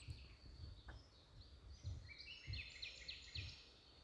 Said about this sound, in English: It just rained, so it's not many people are out in the park, which means it's me and the trees and the birds, which you probably hear. Here, let me be quiet for a second so you can hear them.